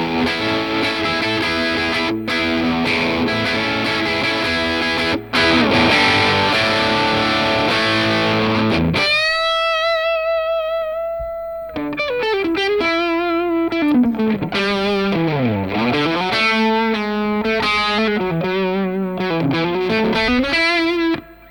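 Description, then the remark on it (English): Crunchy electric guitar through an AC30 amp: about nine seconds of thick, distorted strumming, a sudden stop, then sustained single notes and a bending, wavering lead line, loud throughout with no talking. “Sounds great. Sounds like an AC30.”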